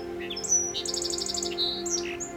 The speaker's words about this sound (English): The song sparrow is one of the most well-known native sparrows of North America.